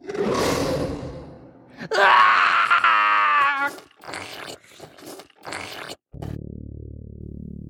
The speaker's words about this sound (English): From outside, I can see nothing. All I can hear is my best friend screaming. The sound makes my stomach drop as my blood instantly runs cold.